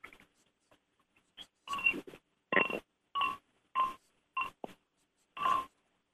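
Two fishing rod handles knocked together about eight times at an uneven pace to demonstrate their sensitivity compared with cork, each hit a short hollow clack with a slight ringing tone, separated by silence with no talking.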